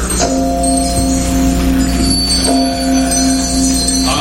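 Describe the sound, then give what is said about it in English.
A heavy old disused bell begins to swing and rings loudly, struck twice about two seconds apart, each stroke leaving a long, humming metallic tone that carries on without any voices. “His glance happened to rest upon a disused bell, and as he looked, he saw this bell begin to swing.”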